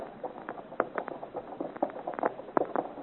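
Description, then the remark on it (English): Horses' hooves trot along a hard road in a quick, uneven clip-clop rhythm, fairly soft, with no voices, as travelers press on toward Freiburg. “We have made good speed. We have fine horses, Chevalier.”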